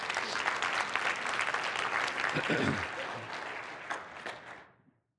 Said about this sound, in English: Somebody clap your hands to the Lord tonight.